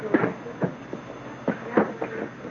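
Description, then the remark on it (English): Bar ambience at about 2 o'clock in the afternoon in the Board of Trade bar on Main Street in Nome: a series of irregular knocks and clattering thumps, some in quick pairs, over a steady low hiss, with no clear voices. “And you're hearing the sounds of the bar as it just swings along here about 2 o'clock in the afternoon.”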